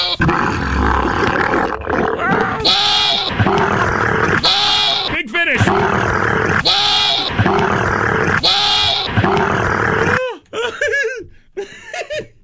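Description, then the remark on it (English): A camel grunts and roars in loud, repeated guttural bellows with bubbling, gargling pulses, several long calls in a row, trailing off into shorter rasping snorts near the end. “You just heard what could possibly happen if a lonely camel with its doula out encounters a goat.”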